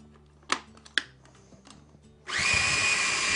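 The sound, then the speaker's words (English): Two sharp clicks, then a food processor pureeing basil and olive oil into a paste whirs to life with a loud, steady, high-pitched grinding roar that holds to the end. No one speaks. “I'm going to add more through the feeding tube as I get going, and this will puree it into a nice paste.”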